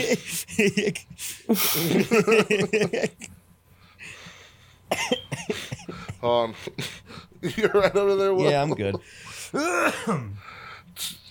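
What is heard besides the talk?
coughing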